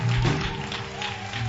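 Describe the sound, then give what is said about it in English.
A crowd at a church service claps their hands for the Winga Choir as it comes up to sing, in a dense, steady wash of applause that holds at a fairly even loudness throughout, with no distinct individual claps standing out. “Let's clap our hands for the Winga Choir.”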